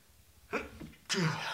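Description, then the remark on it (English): A single sneeze: a short, catching intake of breath, then a brief pause before a loud, explosive burst that trails off quickly. No one speaks. “I'm sorry, I have to sneeze.”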